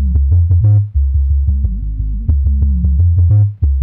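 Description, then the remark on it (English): Loud, booming bass-heavy music thumps steadily, with deep low tones throbbing under sharp percussive hits in a driving rhythm. There's no talking, just the music filling the short stretch. “You hear that bass though?”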